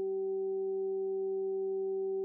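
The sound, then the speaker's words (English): A steady, low 192 hertz pure sine tone hums continuously, layered with two fainter higher tones at 384 and 768 hertz, Solfeggio frequencies, in a smooth, unchanging chord. It holds at an even, moderate level throughout, with no voices. “192 hertz, 384 hertz, 768 hertz.”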